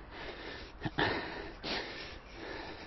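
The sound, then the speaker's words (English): Heavy, rough breathing of a runner after a one-minute running effort, two forceful breaths a second apart over a steady rushing background like wind, with no talking. “Oh, I had to work hard on my breathing there to really think about it.”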